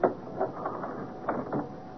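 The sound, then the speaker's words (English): A door is being closed, heard as a short run of mechanical clicks and rattling latch sounds at moderate volume, with a couple of sharper knocks near the end and no voices. “Wait till I close the door.”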